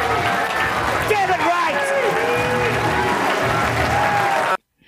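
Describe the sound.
A crowd cheers and applauds continuously after a bowling strike, a dense wash of clapping with overlapping shouts and excited voices, loud and sustained for several seconds before cutting off abruptly.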